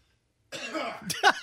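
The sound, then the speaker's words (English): A loud cough with a rough throaty start, followed by a sharper second burst, after a brief silence. “I got a cough.”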